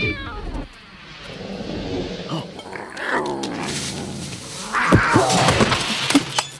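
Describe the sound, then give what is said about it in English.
A panther growls and snarls under trees, its rough, rumbling cries building in intensity and peaking in loud, sharp bursts near the end as it lunges to grab a drone. “You think it could come low enough that we could grab it? Not you or me. But a panther?”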